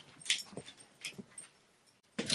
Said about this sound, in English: Here he comes. He's got to come in. He's got to be barking.